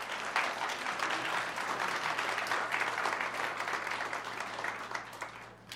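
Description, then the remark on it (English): A church audience applauds steadily for several seconds, giving the applause to God, a dense, even wash of many hands clapping at once that holds its loudness throughout before tapering slightly at the end. “So I want to give a hand of applause, but recognize that we're giving the applause to God for what he is doing in our church.”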